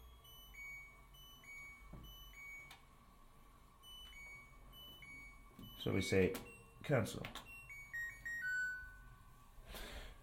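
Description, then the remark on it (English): An LG combination washer-dryer's electronic beeps as its dial is turned: short, high chirps scattered throughout, some in quick rising runs, over a faint steady hum, with a person speaking briefly midway. “It's an LG, and it does cool noises as well.”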